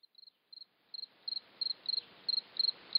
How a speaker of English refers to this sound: We take you now into the company of crickets. As Ted Melillo mentioned, crickets are cold-blooded and take on the temperature of their environment. They are more active in warmer weather and tend to chirp faster.